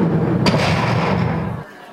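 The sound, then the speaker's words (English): A door shuts with one sharp, solid thud over a steady low rumble, which carries on for about a second before cutting off abruptly into near silence. “The door is being shut.”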